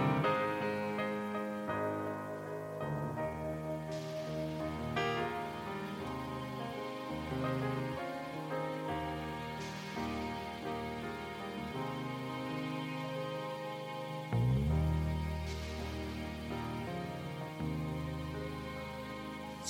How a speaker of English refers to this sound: That afternoon, he was recorded hitting the tire chains on the floor of the studio next door with both studio doors open.